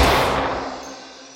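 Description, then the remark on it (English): A single loud gunshot from Harker's gun bursts out as the bullet shatters a window, a bright, crashing smash of breaking glass, the harsh noisy tail fading steadily over about a second and a half. No voices. “Harker's bullet shattered the window, and before he could reload, Count Dracula appeared behind us.”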